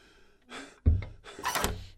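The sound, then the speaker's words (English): A door thuds shut, followed a moment later by a short metallic rattle and click of a lock being turned as someone locks the door of their room. No one speaks. “I'd better get back to bed, and I'm locking my door this time.”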